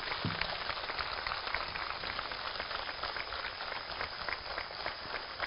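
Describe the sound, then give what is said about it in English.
An audience claps steadily for the Pyramid Spiritual Societies movement for several seconds, a dense, even wash of many hands with a crackling, rain-like texture that holds at the same loudness from start to finish. “Claps to Pyramid Spiritual Societies movement.”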